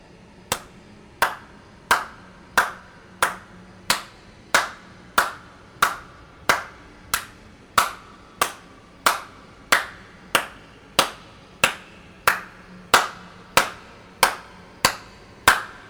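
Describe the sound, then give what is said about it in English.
A long, steady run of single hand claps, roughly two dozen, each sharp and crisp, evenly spaced about two per second over a quiet background with no voices. “Clap once for each person.”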